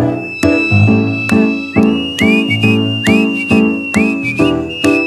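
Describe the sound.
Someone whistles a tune during a band rehearsal, briefly joined by a second whistler. The whistling has bright sliding notes over loud live music, with steady rhythmic piano-like chords and hits pulsing beneath the melody.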